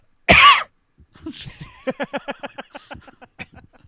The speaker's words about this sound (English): I just want to hear like a dry cough.